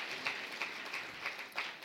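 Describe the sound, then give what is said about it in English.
An audience claps as a clap offering to God, with a steady wash of applause punctuated by sharper unison claps in a regular rhythm, about three per second. No one speaks. “Give God a clap offering for your life.”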